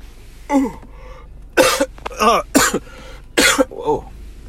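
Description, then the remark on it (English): A person coughs and sputters, almost choking while yawning and trying to sing, with about five or six harsh, irregular bursts, some carrying a strained, voiced gasp in between. No one speaks. “I was trying to sing, yawning, and almost choking.”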